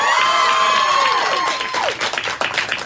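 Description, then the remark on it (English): An audience cheers and shouts loudly on cue, making noise to vote on whether a character will live, with high screams whose pitch slides downward, then the roar thins into scattered claps and whoops. “If you think Harry will live, make your noise here.”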